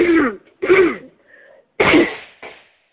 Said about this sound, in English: I don't know where that cough came from. Excuse me.